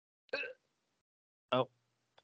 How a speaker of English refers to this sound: Oh, I didn't trust that fart. I had a fart come, and then I pushed it. I was like, oh, I better not push it.